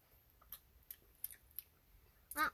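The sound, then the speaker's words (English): Wet, sticky chewing of chewy dried watermelon: a handful of soft, irregularly spaced clicks and squelches, ending in a louder smacking burst, with no voices. “It's like taffy. hard to chew.”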